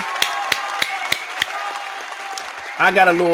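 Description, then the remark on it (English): A handful of sharp, evenly spaced claps ring out at a steady beat over a faint tonal background, then stop as a voice starts up at the very end. “With a round of applause there, you miracle.”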